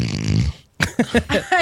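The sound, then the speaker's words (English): A person imitates a snore: one rattly, buzzing snort lasting about half a second, then a short pause and a few quick voiced syllables. “Snore once for yes, snore twice for no.”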